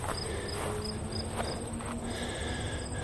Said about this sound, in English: A lot of crickets here.